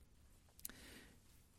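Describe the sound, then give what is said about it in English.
A soft, papery rustle as Bible pages turn to Proverbs chapter 20, verse 11: one quick flick followed by a brief faint shuffle, quiet, with no one speaking. “I heard pages turn.”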